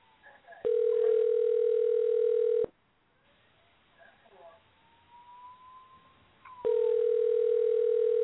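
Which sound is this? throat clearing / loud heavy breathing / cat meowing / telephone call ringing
telephone call ringing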